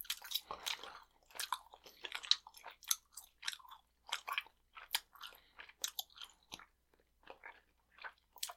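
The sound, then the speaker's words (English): Wet chewing sounds with smacking and squishing bursts in an irregular rhythm, someone working a wad of several pieces of sour chewing gum in their mouth with no talking. “Also, this might be chewing gum as opposed to bubble gum.”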